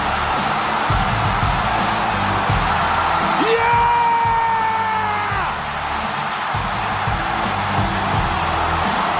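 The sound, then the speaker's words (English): A wrestling crowd roars loudly and steadily in a huge pop for one of the most popular wrestlers, drowning out the music, with one voice letting out a long, sustained whoop above the din midway through. “You're going to hear the crowd for a while.”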